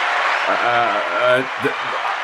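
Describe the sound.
A played applause sound effect: a steady wash of crowd applause runs throughout, with a few voiced shouts or cheers rising over the clapping in short bursts.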